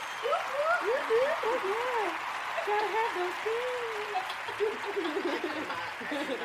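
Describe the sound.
A crowd claps steadily for several seconds, with excited whoops and cheering voices rising and falling over the dense, continuous applause.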